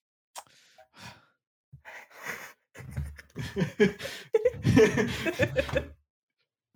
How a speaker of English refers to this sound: You heard my Karen gasp.